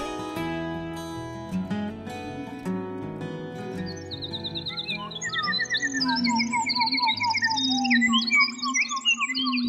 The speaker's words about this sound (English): Bernard Fort recorded a lone wood thrush in the Canadian woods near Quebec